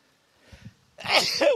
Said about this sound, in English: you hear my sneeze over his. Must mean it's raining if I start sneezing.